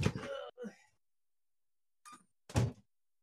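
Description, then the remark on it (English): A door is pushed shut: some brief scraping and shuffling, a pause, then a short click and a solid thud as it closes. Nobody speaks. “Hold on, I need to shut my door.”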